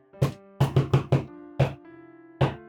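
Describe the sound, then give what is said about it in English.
Knocking on a door, loud: a single knock, then a quick run of four, followed by two more spaced-out knocks, each with a short resonant ring. “It's just knocking on the door.”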